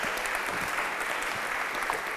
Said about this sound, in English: Why don't you give a little bow and a round of applause?